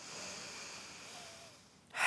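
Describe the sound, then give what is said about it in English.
Deep belly breathing that puffs out the belly, with a bag of rice resting on the tummy as a visual aid: a long, airy inhale that slowly fades, then a brief pause before a sudden, loud, forceful exhale rushes out. No one speaks. “And if I do a different kind of breathing, it might look like this.”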